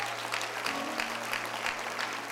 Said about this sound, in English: Let's clap to the Lord and give him praise and adoration tonight.